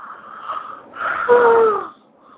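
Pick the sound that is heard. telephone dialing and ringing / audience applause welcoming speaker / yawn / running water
yawn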